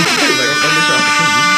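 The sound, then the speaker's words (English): A loud, sustained air horn blares continuously with a harsh, buzzing tone, layered like several horns sounding at once, filling the whole moment with no talking. “Okay, hope drop some horns for him.”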